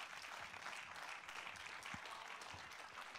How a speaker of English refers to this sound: Come on, I need somebody to clap and act like you're interested.